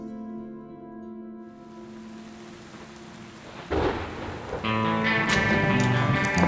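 Heavy rain hisses steadily throughout a thunderstorm, then a loud crack of thunder breaks in midway and rumbles on, with the downpour growing more intense afterward. Sustained musical tones play underneath.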